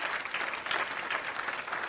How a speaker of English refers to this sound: Jesus can forgive every sin that anybody has ever committed. Somebody clap your hands like that's true, would you?